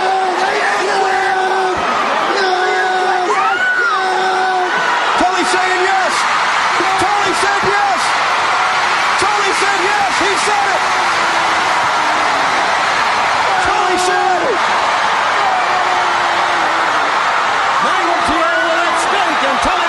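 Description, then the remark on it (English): A roaring wrestling arena crowd yells and whoops throughout while sharp, heavy slams ring out again and again, loud metallic chair impacts landing in irregular bursts over the din, as a wrestler fights back with a piece of a chair. “Now Magnum's got one. He's got a piece of that chair!”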